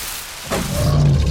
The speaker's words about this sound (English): Everyone, this is Alvin, the alligator. Say hi, Alvin. Alvin says hi. An alligator? I knew I recognized that growl.